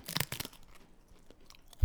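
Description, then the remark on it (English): Crisp crunching of a seasoned triangular cricket chip with chia seeds being bitten and chewed: a quick cluster of dry, crackly bites, then quieter chewing, ending with a soft low thump. No one speaks. “How are we feeling about like the fact of eating crickets?”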